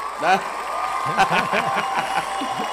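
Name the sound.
crowd cheering sound effect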